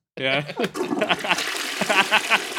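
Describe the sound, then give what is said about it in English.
A toilet flushes with a steady, hissing rush of water lasting a couple of seconds. A voice sounds briefly at the start and bits of voice stay mixed in with the gurgling. “I'm gonna get this one the flush.”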